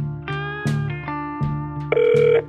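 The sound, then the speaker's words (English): A telephone line rings as a tip line number is called, with a run of steady electronic tones, each starting with a brief click and shifting pitch every half second or so, clear, with no voices. “Thank you for calling the Isidore Banks tip line.”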